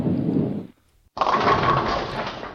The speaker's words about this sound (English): That knocks down six pins.